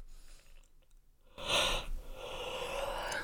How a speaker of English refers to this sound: I just had a Red Bull and I'm fucking yawning.